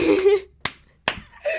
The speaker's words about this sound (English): Boom, clap.